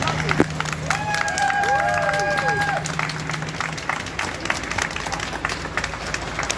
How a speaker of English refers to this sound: Two coachloads of Ukrainian refugees have arrived in Kent today. 91 people who fled the war-torn country were greeted by cheers and applause at Hartley Country Club near Dartford.